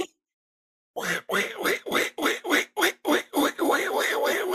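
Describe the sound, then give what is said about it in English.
After a second of silence, a person imitates a cartoon duck: a rapid, sputtering run of about eight loud, raspy quack-like syllables that blur into a continuous squawking babble. “I thought for a while that I could do an impression of a duck, or like not even a duck, but I guess like Daffy Duck”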